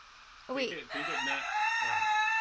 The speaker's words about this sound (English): Oh, raccoon. Yes. I do know that. I knew it after like 10 guesses. Does that sound like a raccoon? That totally does.